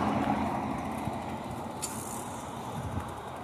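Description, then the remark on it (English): Cars rumble past on a road heading down into downtown at sunset, a continuous, fairly loud wash of engine and tire noise with no clear gaps and no voices. “More cars coming down into downtown.”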